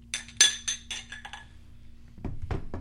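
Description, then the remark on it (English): Several bright glass clinks ring out close together in the first second and a half, a quick toast before tasting Johnnie Walker rye whisky, followed by softer shuffling and movement noises. “All right, let's taste this Johnnie Walker rye. Cheers. Cheers.”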